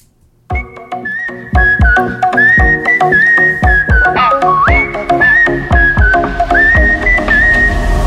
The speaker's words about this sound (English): Song came out in 1999, obviously, and got a tropical house makeover with springy percussion, a little bump in the tempo, and the recognizable whistling. Let's take a little listen.